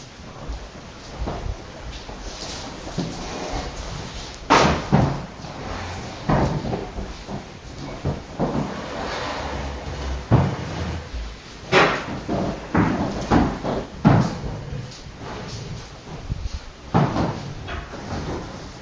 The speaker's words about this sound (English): And now take the chairs and get them out of the way, put them back where they came from.